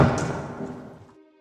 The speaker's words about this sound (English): And the door slams behind you.